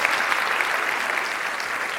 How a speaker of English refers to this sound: They are here in the House this evening. I would love to give them a round of applause and recognition for this.